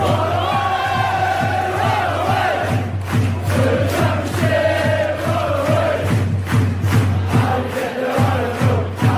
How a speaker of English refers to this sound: Oh, and we're through to the next round of the Nestle Cup. Insert rapturous applause here.